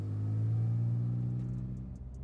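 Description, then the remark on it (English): Nia's car engine rumbles low and steady, holding a deep idle-like drone that eases slightly as it drives off, with faint higher clicks near the end and no voices. “They hop in Nia's car, and they drive off.”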